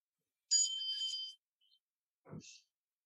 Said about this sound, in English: The bell doesn't mean to stop. It means we're celebrating. Nothing to stop doing.